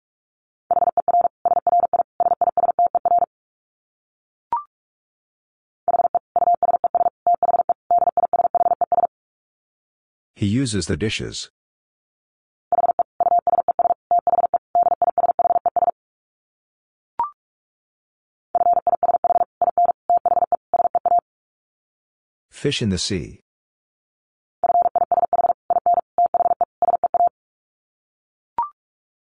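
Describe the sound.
Rapid Morse code at 45 words per minute: a steady mid-high tone keyed on and off in fast bursts, grouped into runs several seconds long, with a short spoken phrase between some groups.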